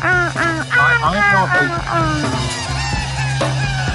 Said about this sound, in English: And the tape loops that they use to create the sound that we hear as birds is so beautiful. Yes, that was the that's the loop that does it for me.